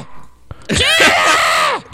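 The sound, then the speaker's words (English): A single loud, shrill scream from a fight video erupts after a brief knock and holds for about a second, wavering in pitch before cutting off abruptly. “And everyone was screaming at him”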